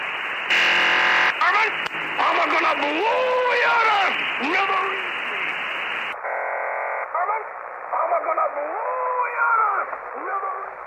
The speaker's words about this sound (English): Listening to this kind of feels like picking up the phone when someone is already on the line. You're not sure what it means, but you know it's not intended for you. What you just heard is called a number station.